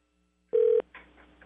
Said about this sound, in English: Okay, it's ringing.